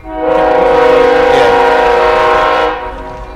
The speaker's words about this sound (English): I've never heard that train this much. I know, right? I'll wait for it.